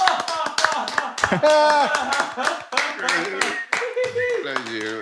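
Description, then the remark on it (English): A crowd claps steadily and loudly for about five seconds, a dense patter of many hands, with voices calling out and talking over the applause. “We actually have a crowd here tonight. Thanks, guys.”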